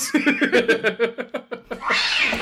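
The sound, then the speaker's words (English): A terrified real cat yowls in a rapid string of short, strained, loud cries, ending in a harsh, breathy hiss, as it is thrown during a fight scene and caught. No one speaks. “What is up with that cat?”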